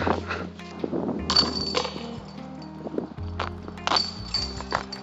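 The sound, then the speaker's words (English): A disc golf disc strikes basket chains with a muted, dull metallic rattle, several clinking impacts spread over a few seconds, without much lingering ring. “Banging chains. Par train. So you're like muted. Yeah, they don't have that resounding, ringing chain that I like.”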